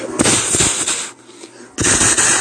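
Shots from a 9mm pistol fire repeatedly, a rapid cluster of loud, sharp cracks, then a brief lull before another harsh burst of shots. No voices are heard.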